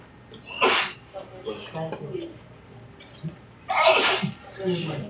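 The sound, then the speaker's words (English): Two sharp sneezes, one near the start and a louder one about three seconds later, each a sudden burst of breathy noise, with murmured speech in between. “Bless you.”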